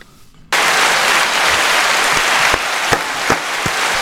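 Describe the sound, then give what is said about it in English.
A soundboard pad plays a crowd bursting into loud, dense applause after a brief quiet moment, a steady wash of many hands clapping with a few sharper, louder claps popping out near the end; the crowd is clapping after a karaoke performance. “That's the crowd after we did our karaoke. Clap.”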